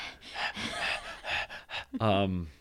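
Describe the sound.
A pet breathes heavily right up against the microphone, a run of loud, breathy snuffles and huffs, ending with a short voiced sound.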